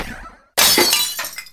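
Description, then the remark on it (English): A thrown car battery smashes through an apartment window with a sudden, loud burst of shattering glass, followed by a second of scattering, tinkling shards. A faint fading noise comes just before the impact; no voices. “This was a car battery.”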